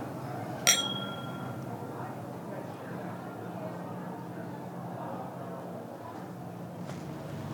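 A single bright clink of glasses touching in a toast, sharp, with a short ringing tail that fades over a second against a low background murmur.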